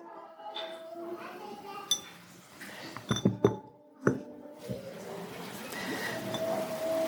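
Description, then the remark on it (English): A candle is set down inside a glass jar: a quick cluster of bright glassy clinks and knocks, then one more sharp clink, over a low murmur of voices. “Now, I'm going to just put this candle.”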